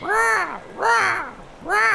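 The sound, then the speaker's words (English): Three loud, harsh caws of razor crows in a steady rhythm, each a raspy, harmonic call with a brief gap between, prominent with no other sounds around them. “As you approach, you are suddenly startled as you hear the cawing of razor crows.”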